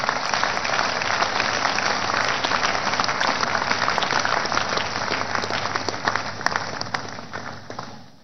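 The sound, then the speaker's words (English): An audience claps loudly and steadily for the Lord during worship, a dense wash of many hands sustained for several seconds before tapering off at the end. “Give the Lord the biggest clap.”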